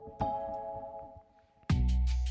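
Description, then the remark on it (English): A chime is struck and rings on with steady, layered mid-pitched tones, then a second, louder strike comes in with a burst of bright, noisy sound over the ringing. “now the chimes are coming in. So they are coming in now.”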